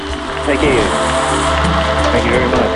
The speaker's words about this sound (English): He is the star of our show, and I hope you'll welcome him, please, with a wild round of applause.